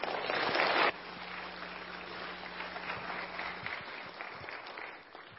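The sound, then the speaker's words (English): An audience at a Louisiana Baptist Foundation gathering claps steadily for about five seconds to welcome a speaker, with a dense patter of many hands that swells loudest at the start, then holds even and fades slightly at the end. A low hum sits underneath. “You can save your applause until after I'm done, then you may not want to give it at that point.”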